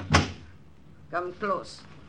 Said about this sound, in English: you may go and close the door.